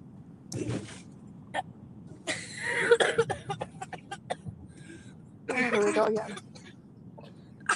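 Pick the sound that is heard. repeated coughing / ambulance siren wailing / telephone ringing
repeated coughing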